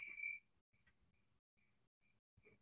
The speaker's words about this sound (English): Let me get my crickets. Hold on.